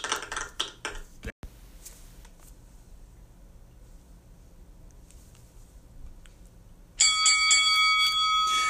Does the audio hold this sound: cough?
no